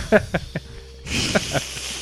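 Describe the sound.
A steady, fairly loud hiss switches on about halfway through and continues to the end, with short bursts of someone talking before and over it.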